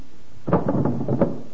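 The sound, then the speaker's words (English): An empty desk drawer in an office is pulled open and pushed shut, a woody scraping slide with a few quick knocks and rattles over about a second, moderately loud, with no voices. “Let's have a look in the desk drawers.”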